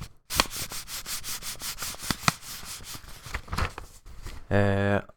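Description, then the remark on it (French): Non-acid paper from the company Garox being slowly torn, a steady grainy rip of about four seconds full of rapid crackling pulses, followed by a brief buzzy, humming tone. “La déchirure. Donc, sans surprise encore, comme son. On a un papier non acide.”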